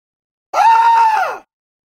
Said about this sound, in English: Going to be a lot of those screams this weekend.